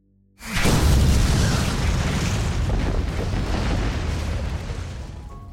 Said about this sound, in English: And suddenly you hear a loud explosion.